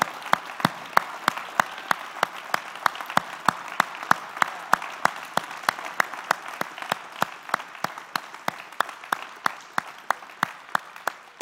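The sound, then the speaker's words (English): An audience claps hands in praise of God in a steady, rhythmic beat, about three sharp claps per second, over a continuous wash of scattered applause. No one is speaking. “Like shout with your voice and clap with your hands and declare, you will live and you will not die and you will reign in the way God has desired for you to reign.”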